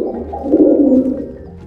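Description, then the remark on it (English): A soft, low pigeon coo swells and fades over about two seconds, fairly loud, with a throaty rolling quality and no voices; pigeons in New York City. “Okay, pigeons are super common here. I've seen about 1 million of them since I arrived.”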